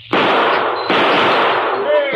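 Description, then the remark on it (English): Two loud gunshots about a second apart, fired by Calamity, knock the tops off bottles, each blast trailing off in a long, harsh roar, with faint glassy ringing rising near the end. “Calamity slinging lead.”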